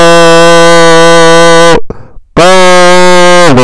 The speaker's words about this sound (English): Brother. The young brother's phone. All right, anyways, sorry about that.